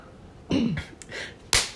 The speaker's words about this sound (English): Snap out of it. Oh, I didn't even say the line. You messed up. And you should have slapped me twice.